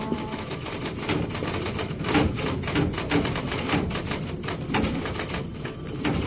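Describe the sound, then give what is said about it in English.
Steady typewriter typing of reports at Metro Division Homicide, a dense run of sharp mechanical key clacks at an uneven, brisk rhythm that continues throughout with no voices. “And at Metro Division Homicide, there are reports to type up.”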